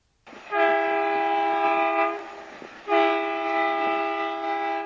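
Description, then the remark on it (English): A steam train whistle sound effect from the Alexa skill Alphabet Choo Choo Train sounds two long, loud blasts, each lasting about two seconds with a short pause between them. There is no talking. “Choo Choo Train is the alphabet train that will take you through different stations where you can learn about alphabet letters.”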